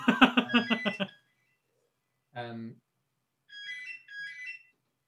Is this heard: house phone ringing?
yes